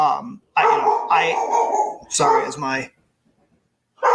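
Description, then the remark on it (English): A dog barks and whines in several loud, drawn-out bursts, with short pauses between them and a stretch of quiet near the end. “My dog is barking.”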